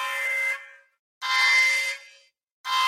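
An emergency alert tone blares from devices in loud, harsh, buzzing bursts, three blasts separated by short silences, with no voices.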